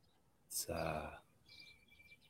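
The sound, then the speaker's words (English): A short burst of voice gives way to faint birdsong heard through open windows: a quick series of high chirps and twitters, soft and airy. “I have the windows open today. You can hear the birds.”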